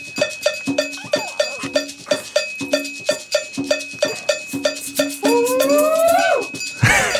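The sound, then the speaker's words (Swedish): A cowbell, played as part of a percussion recording, clanks in a quick, steady rhythm, bright metallic hits repeating over and over; near the end a sliding, wavering tone rises and falls before a sudden loud burst. “Där kommer koklockan.”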